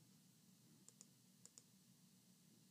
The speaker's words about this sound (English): I was clicking the button. I feel like a grandpa. I was clicking the button.